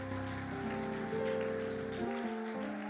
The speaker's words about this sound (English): You don't want to clap? Go ahead and clap.